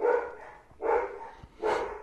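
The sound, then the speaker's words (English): Three loud, sharp dog barks in quick succession, evenly spaced about a second apart, agitated, with no talking; dogs at a home going crazy. “You hear the dogs again? On purpose. They're going crazy.”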